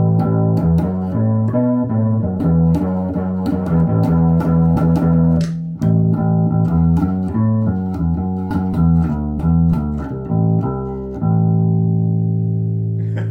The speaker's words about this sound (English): And then up here, I have this other octave pedal that one of my buddies lent me. I'm just trying it out, but this is a weird duck too.